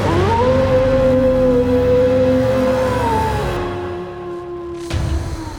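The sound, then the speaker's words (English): A single long howl of Fenrir, the world-eating wolf, rises quickly, holds a steady wavering pitch, then sinks and fades. It is loud, with a brief low thud near the end and no talking. “Far to the rear of this army, Tyr saw something he had hoped to never see again in his long life. Fenrir, the world-eating wolf.”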